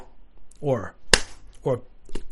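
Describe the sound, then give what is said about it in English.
A single sharp, crisp slap on the mouth cracks out, set between two short wordless vocal sounds that swoop in pitch, with a faint click trailing afterward. “I slapped my mouth.”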